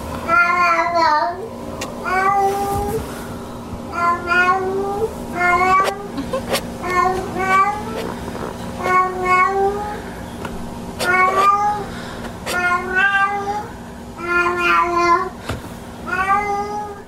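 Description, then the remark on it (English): A cat meows over and over in long, wavering, plaintive cries that sound strikingly like a crying baby, fairly loud, with steady background hum and no talking. “It's my daughter's cat, Sophie.”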